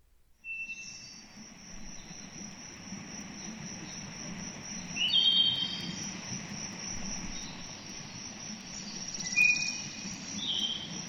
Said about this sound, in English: Hey, Google. Play forest sounds. Here's what a forest sounds like.